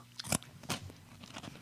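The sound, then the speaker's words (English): Crunching of crunchy Cheetos, several sharp bites and chews in quick succession, loud with no talking. “I like crunchy Cheetos more than puffy ones because the crunchy ones are, they just have more flavor almost.”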